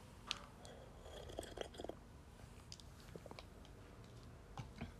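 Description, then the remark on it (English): Quiet mouth sounds of someone sipping hot spiced chai tea: soft slurps, small wet clicks and swallows scattered over a few seconds, with no talking. “I love chai tea. It's just, oh my god, the spice flavor. It just reminds me of the holidays, so I'm very happy. I'm cozy.”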